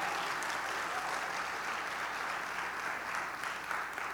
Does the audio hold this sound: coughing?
no